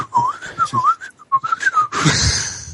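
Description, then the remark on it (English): A quick, wavering whistled melody, the Twilight Zone theme whistled loudly and very fast, darts up and down in short rapid phrases for about two seconds, then breaks off into a loud rush of breathy noise. “busy loudly whistling the Twilight Zone really fast to myself.”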